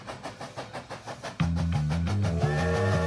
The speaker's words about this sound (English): I think you should play the train.